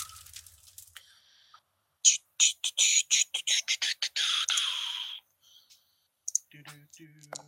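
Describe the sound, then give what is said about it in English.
A quick run of sharp computer mouse clicks, about a dozen rattling off in fast succession as someone clicks on a machete in a game on screen, then a few scattered softer clicks, with faint background sounds in between. “No, that's the damage again, and I just clicked on the machete to try and bring it up over here.”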